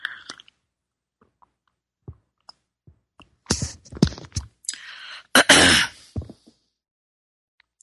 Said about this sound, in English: Time for a sip of my tea. Here we go, my beautiful rainforest tea.